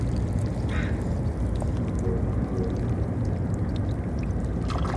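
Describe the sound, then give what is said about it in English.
Faint scattered clicking and soft trickling as water moves through crevices among barnacles and seaweed, set against a steady low roar of city noise that runs throughout without pause. “The tiny clicking sounds that you hear are the meeting of the water and the barnacles.”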